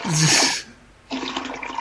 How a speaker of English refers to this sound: Get a flush.